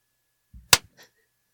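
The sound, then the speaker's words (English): A single sharp slap to the face cracks out after a soft shuffling thump, followed by a faint brief rustle and then quiet. No one speaks. “Now just slap me.”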